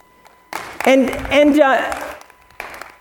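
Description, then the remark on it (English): A burst of audience applause lasting about two seconds, with whooping cheers riding over the clapping before it fades, then a brief bit of noise. “Thank you for those applause.”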